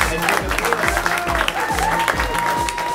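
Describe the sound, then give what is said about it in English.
A live audience at a storytelling show applauds loudly and steadily for the next storyteller, a dense wash of clapping with scattered cheers over a thumping bass beat, the crowd energetic throughout. “Let's start applauding right now”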